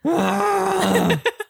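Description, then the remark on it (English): A person imitates the screaming-goat sound a Tesla can be set to play when driving: a long, strained, wavering bleat that holds steady for about a second, then breaks into two short, choppy bursts before stopping. “Or like a goat sound when you go.”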